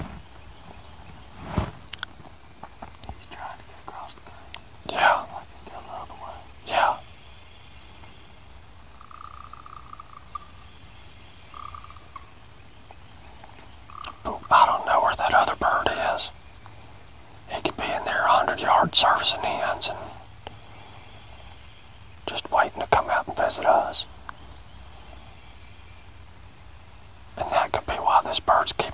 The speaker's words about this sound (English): As much as that bird's gobbling, I don't think he's got hens with him. And I think he's trying to get these hens instead of going to this gobbler to come to him.